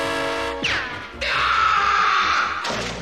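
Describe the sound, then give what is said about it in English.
A cartoonish scream, rising and falling in pitch, as a cartoon character falls over a railing and plummets into a vat, followed by a sustained, strained wail as he screams for help; loud, with no talking. “He falls into the vat and is screaming for help.”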